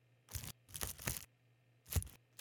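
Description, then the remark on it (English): Several short bursts of crinkly, crunching noise, like paper being crushed and shuffled during a microphone test, arriving in uneven clumps with brief quiet gaps between them. “It sounds like you're just crushing paper.”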